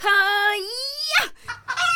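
A loud rooster crow: a long drawn-out call that climbs in pitch and breaks off raspily, followed by a couple of short clucking bursts.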